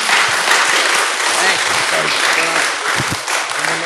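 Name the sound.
round of applause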